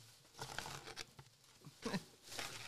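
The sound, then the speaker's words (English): A paper towel is torn off a roll, with a few quick ripping and crinkling bursts, then some papery rustling. No one speaks. “Paper towel.”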